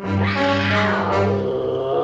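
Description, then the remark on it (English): A giant cat screeches in one long, loud, harmonic yowl that wavers in pitch and rasps throughout, with no talking over it. “We hear a giant cat screeching and we see a giant shadow of a little cat on a wall.”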